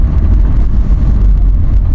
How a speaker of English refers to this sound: Well, it's the second ambulance. Oh, no, sorry, second fire truck. Well, already been an ambulance. Jeez, that sounds like something serious.